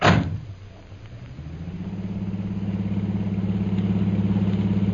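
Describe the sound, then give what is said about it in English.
A taxi engine starts off with a brief knock, then revs up and settles into a steady, rising drone as the taxi pulls away and drives on, fairly loud, with no talking, taking passengers to India House as fast as it can. “Oh, can't we go any faster than this? Step on it, driver.”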